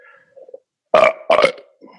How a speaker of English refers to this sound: God, you got to stop burping. Here we go. You got to stop that.